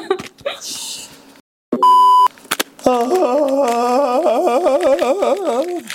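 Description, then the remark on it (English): A short electronic beep, then a voice belts out a long jungle yell from the throat, imitating Tarzan and George of the Jungle, a loud warbling cry whose pitch wobbles rapidly up and down for several seconds. “Yeah, it's Tarzan. Just like that with your throat.”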